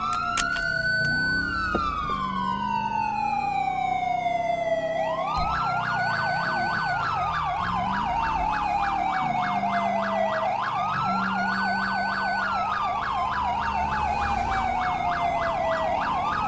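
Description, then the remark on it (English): A Los Santos police car siren wails in long rising and falling sweeps, loud, with a fast warbling yelp layered over it and a low engine rumble underneath. “That's a Los Santos police car!”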